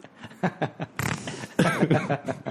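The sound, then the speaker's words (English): Someone blows a short, raspy mouth-fart noise, imitating a small, powerful fart that comes out while peeing hard, surrounded by breathy snickering and chuckles. “But sometimes super little powerful farts come out when you're peeing super hard.”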